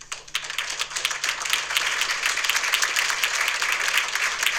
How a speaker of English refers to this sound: Yo, I just want to say everybody was clapping when it was dealt with like that.